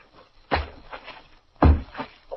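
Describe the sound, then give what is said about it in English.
Two heavy, booming thuds as first the Atom Man and then the Man of Steel strike the earth by the city's North Canal, about a second apart. Each is loud, with a deep low impact, and a faint murmur of background noise fills the gap. “there are two smashing, sickening thuds, as first the Atom Man and then the Man of Steel strike the earth and lie still.”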